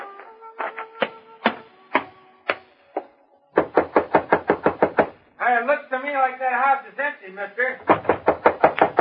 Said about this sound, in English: Huh? Hey, that door open by itself? I don't know.